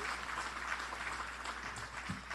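Steady applause from an audience, a dense continuous patter of many hands clapping at an even level throughout, with no voices standing out.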